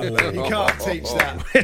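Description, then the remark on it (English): Four sharp hand claps land at a slow, steady pace, about one every half second, over a continuous murmur of talking voices, as someone applauds the radio. “I've mocked the moose for applauding radio, and I'm applauding the radio right now.”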